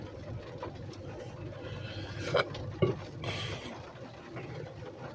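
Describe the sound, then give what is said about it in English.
Steady rain falls in a continuous, even hiss with a low rumbling undertone, broken by a couple of brief, sharper splashes partway through. No one speaks. “As you can hear, probably, the rain is coming down.”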